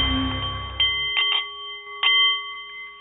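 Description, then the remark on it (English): A meditation bowl chimes to open the show The Art of the CEO, with a long, steady shimmering ring that hangs in the air, with a few soft taps or strikes along the way and no voices. “The meditation bowl is chiming, and that means it is time for The Art of the CEO, the show for people who enjoy the challenge of business and who want to do it a little better.”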